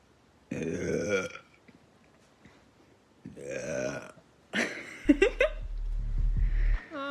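Several loud, drawn-out belches by a woman, filmed as an ASMR-style video, separated by brief pauses, the last one deep and rumbling with a gurgly, croaky texture. No talking.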